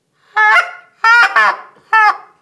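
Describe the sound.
Loud honking clucks from a single-reed, short-reed goose call: four sharp, nasal notes, two of them back to back, separated by brief pauses, with no talking.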